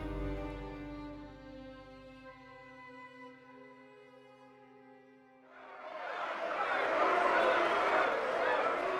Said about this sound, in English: We're inside the House of Commons. It's packed with members of Parliament. They're jeering, cheering. It's raucous, like a circus.